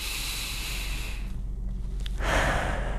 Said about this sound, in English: just taking a couple extra breaths there. Focus your breathing.